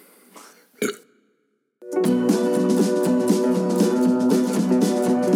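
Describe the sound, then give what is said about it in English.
A single short, loud burp, then a brief silence before steady music with a driving beat starts and plays on. “Yeah, there's a burp coming in.”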